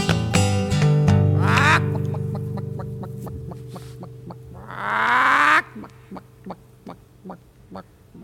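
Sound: person imitating chicken clucking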